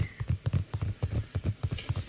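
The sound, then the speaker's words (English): Rapid, steady tapping on a Nintendo Switch console, about a dozen crisp, hollow knocks in quick rhythm, clearly audible with no talking over them. “Some good tapping.”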